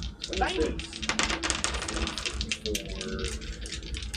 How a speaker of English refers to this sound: I've never rolled these dice before in my life.